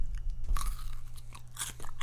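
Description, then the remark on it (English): A loud bite into a hot dog topped with a fried Pop-Tart, followed by several sharp crunches and chewing sounds in an uneven rhythm, with no talking. “Take a little crunch of this.”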